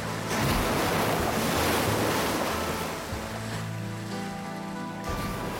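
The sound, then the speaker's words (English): Ocean surf roars steadily and loudly, a dense wash of waves crashing against rocks at the foot of a 100-meter drop on an eastern coastline, with gusty wind noise buffeting the microphone; no voices, just the continuous churn of waves. “As well as a 100-meter drop to the waves and rocks below.”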